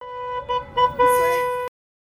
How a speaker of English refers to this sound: A speaker was playing music from Burma, and a few dozen people were holding signs aimed at passing cars and pedestrians. Some cars were honking as they drove by.